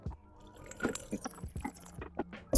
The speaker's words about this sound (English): I'm thirsty, so give me a second as I take a sip of water.